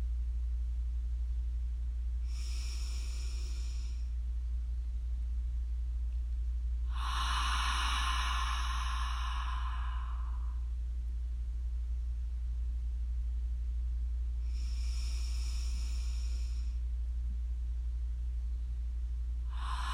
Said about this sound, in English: Inhaling through the nose with your mouth closed, and exhaling through your mouth, making a deep sound. Taking a pause after each inhale and exhale.